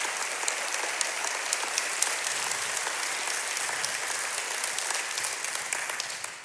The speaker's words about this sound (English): You know, they worship with us online, and I think we should give them a big round of applause right now to let them know how much we miss them.